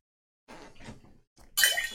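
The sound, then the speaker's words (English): A die, rolled for a perception check, dropped into a cup of coffee: a few soft rustling knocks, then a sudden loud, bright splash and clatter at the end. “He just dropped a dice in his water, I'm pretty sure.”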